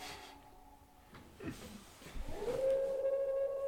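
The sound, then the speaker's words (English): A single long wolf howl from a National Geographic animal sounds recording rises from a low start into a steady, sustained tone that holds clearly for the final second or so, loud, with no talking over it. “They have a wolf one.”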